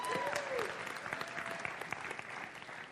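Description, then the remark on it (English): A crowd applauds steadily, many hands clapping in a dense, continuous patter, with a couple of faint whistle-like tones rising over it early on. “Come on, give it up for him. All right, give him a big one.”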